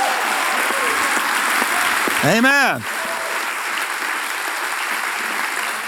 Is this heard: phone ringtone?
no